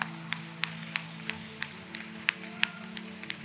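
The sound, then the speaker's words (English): An audience claps in a steady, rhythmic beat, a round of applause for Jesus in the morning, about a dozen crisp sharp claps over a low sustained musical drone, fairly quiet with no voices. “Let's give Jesus a big round of applause this morning.”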